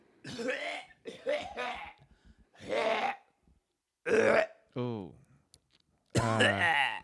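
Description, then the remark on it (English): A voice imitates an older man's loud, exaggerated coughing in a waiting room: a series of about six harsh, throaty bursts mixed with grunting, burp-like noises, one trailing off in a falling groan. “He was coughing in a waiting room.”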